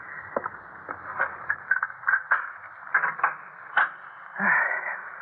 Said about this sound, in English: Now, maybe I'd best open the door.